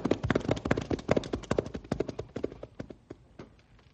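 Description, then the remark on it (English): Horses' hooves clip-clop in a quick, uneven rhythm of many overlapping hoofbeats, loud at first and then fading steadily as the rested horses move off, heading back to town. “Well, let's step on it and get back to town now that the horses are rested.”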